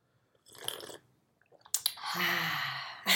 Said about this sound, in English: We're back. We have our coffee. Now I can take a sip really quick.